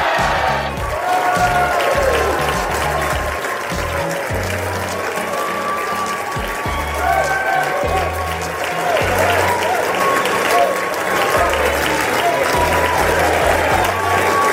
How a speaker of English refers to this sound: You can hear some of the chanting there, Build Back Better, the applause. That from the House Democrats earlier today when they passed on party lines this reconciliation bill out of the lower chamber.